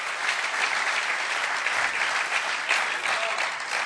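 An audience claps steadily for the musicians, a dense, continuous wash of applause at an even level throughout, with no voices standing out above it.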